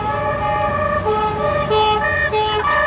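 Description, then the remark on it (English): Loud sirens of approaching police vans wail continuously, their stepped tones overlapping and shifting pitch, with steady road rumble underneath and no voices. “Just then, you hear approaching sirens and the screeching of wheels.”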